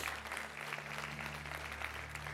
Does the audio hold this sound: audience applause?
yes